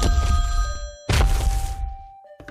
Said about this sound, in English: And my phone rang. Now, I was in the middle of knit one, purl two, so I had to quickly get through a couple more stitches, and then my phone rang and rang until finally I stomped over and answered it.